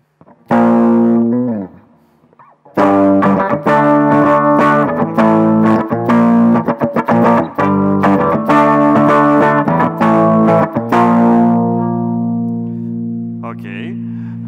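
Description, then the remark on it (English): A loud electric guitar, its treble boosted with an equalizer, plays a series of strummed and picked chords with a bright, sharp treble edge, ending on a long sustained chord that rings out and fades. “Or increase them with treble.”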